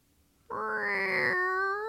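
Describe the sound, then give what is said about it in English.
A person imitates a cat with one long, drawn-out meow that rises and then holds. It is fairly loud, with no other sound around it. “Do a cat sound.”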